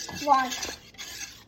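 A metal whisk clinks and scrapes against a bowl as flour is whisked into milk, butter, sugar and salt, with a bright ringing tap early on followed by quicker, softer rattling strokes at a moderate level, and no voices.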